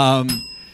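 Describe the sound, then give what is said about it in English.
A bright bicycle-style bell dings once, its sharp metallic strike ringing out with a sustained high tone that fades away over a moment. “got the bell over there.”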